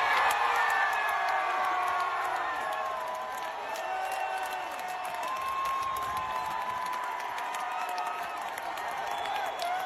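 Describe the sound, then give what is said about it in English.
A large concert crowd cheers and whoops continuously, a dense roar of many voices with scattered clapping and high shouts rising over it, loud throughout the whole stretch. “Let's hear that again and listen to the crowd.”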